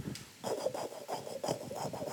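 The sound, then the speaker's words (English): A fetal heartbeat on an ultrasound monitor: a rapid, steady train of rough whooshing pulses, several per second, with a raspy, swishing texture and no voices. “Because baby's heartbeats are real fast.”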